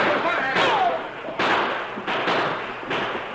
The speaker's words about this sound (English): Moving through the sagebrush, the men of the posse gradually crept closer until they were able to rush the front door. Then they burst inside.